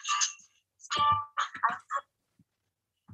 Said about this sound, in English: That was my ringtone being … by ….